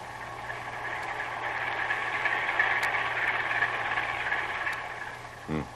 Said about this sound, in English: Well, Herr Lieutenant, what have you found? It must be the one, Herr Captain. Heavy engines and 2 propellers. Let me listen.